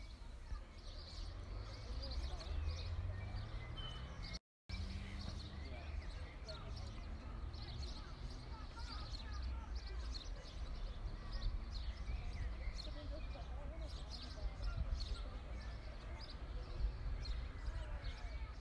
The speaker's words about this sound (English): Now, I don't have scratch and sniff, but this is what the botanical garden sounded like from the bench we sat and had a rest at.